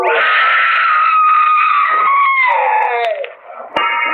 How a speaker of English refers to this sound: I wish I never heard that scream.